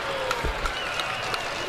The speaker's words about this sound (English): The first Angel to reach base tonight against Chris Sale, and you can hear the crowd appreciating his effort tonight.